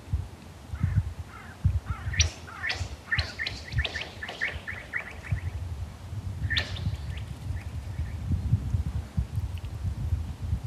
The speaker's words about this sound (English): children were skimming ice on top of the frozen lake